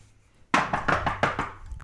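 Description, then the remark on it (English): A quick series of about five to six hollow knocks on wood, evenly spaced and fairly loud, following a brief quiet moment with no talking. “Knock on wood.”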